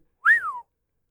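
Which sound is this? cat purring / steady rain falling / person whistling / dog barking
person whistling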